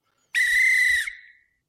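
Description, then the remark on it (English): A single loud, sharp whistle blast, steady and shrill for about a second before trailing off, with no voices around it; the whistle was hit by accident. “Oops, hit the whistle there.”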